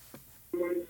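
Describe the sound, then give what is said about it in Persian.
A brief soft thump, then a single steady electronic telephone tone as a call-in program takes its last caller, holding for about a third of a second before cutting off, clear, with no talking. “دوستان آخرین تلفن رو میگیرم، از حضورتون مرخص میشم.”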